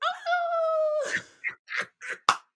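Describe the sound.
A person imitates a dog named Sue whimpering in a role play: one long, steady high whine lasting about a second, followed by four short, breathy yips and whimpers in quick succession, fairly loud.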